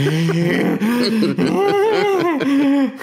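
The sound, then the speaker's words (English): A person imitates a gamer hunched over a screen in the dark, with strained groaning and heavy breathing, a continuous run of loud, wavering moans that rise and fall in pitch for about three seconds, with no words. “Breathing Die. Heavy, sweating.”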